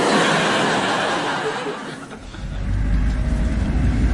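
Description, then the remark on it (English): A green truck drives by on a road: steady road noise dips briefly, then a heavy engine rumble swells and holds loud through the second half. “Green truck, that counts double.”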